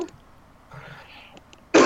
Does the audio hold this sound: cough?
yes